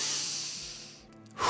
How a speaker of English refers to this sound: You don't even have to meditate before you paint or draw. Just try breathing a few deep breaths.